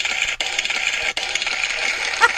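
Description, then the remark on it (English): A short burst of an applause sound effect, thin and crackly with a dense hiss like crinkling paper or running water, steady and fairly loud with two brief dropouts, then cutting off abruptly. “Sounds like crinkling paper, running water.”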